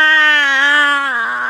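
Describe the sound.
A man lets out a single loud, sustained scream imitating the character Cal Kestis, holding a steady, strained pitch for over a second before it dips slightly at the end. No other sounds accompany it.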